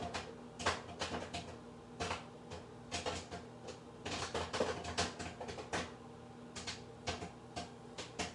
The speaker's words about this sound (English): You can hear the kernels popping.